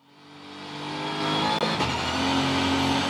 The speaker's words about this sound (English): You can't even hear the engine. No, it's just straight gear cut gears, the gearbox.